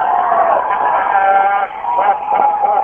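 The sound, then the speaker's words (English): A mob cheers and shouts loudly as people tip over a police car onto the one beside it, a steady wash of many raised voices with wavering yells on top, dipping briefly midway before swelling again. “They're tipping over one of the police cars, and they're cheering. Listen to the crowd.”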